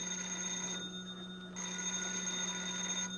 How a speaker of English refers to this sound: Yeah, I'll get the phone.